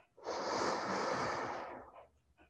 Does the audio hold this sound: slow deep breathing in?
yes